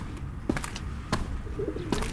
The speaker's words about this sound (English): She's selling fresh bread and cheese. Buongiorno. And pet birds, which are quite popular here.